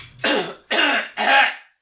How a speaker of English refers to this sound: I'm trying to cough. There's something in my throat that's like feels weird.